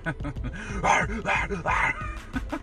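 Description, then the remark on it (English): A person imitates a crazy dog, letting out a rapid string of loud, raspy barks and yips, with three stronger bursts in the middle and no real talking. “When I used to go into my house, I would just bark like a fucking crazy dog.”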